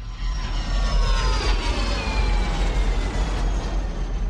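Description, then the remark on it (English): A loud, steady jet engine roar with a deep rumbling low end and high whining tones that slowly drift in pitch, sustained continuously, with no voices. “To find out more about the engineering behind the suck, squeeze, bang, blow principle in the jet engine, naked scientist Dave Ansell went along to the Heritage Museum of jet engine manufacturer Rolls-Royce in Derby to meet Professor Jim Wickerson.”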